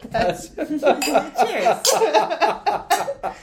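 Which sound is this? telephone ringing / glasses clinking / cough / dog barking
glasses clinking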